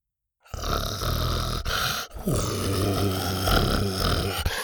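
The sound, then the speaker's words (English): A dog growls in a low, continuous rumble for about four seconds, pausing briefly halfway through before resuming just as steadily. There is no talking. “Buck was now growling and lowering his head.”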